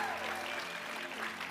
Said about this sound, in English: Hello, Oklahoma City Community Church. Come on, give your hands, yourselves a hand clap.